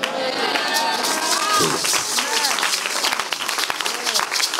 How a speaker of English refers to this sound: The Lord bless those who are clapping for you.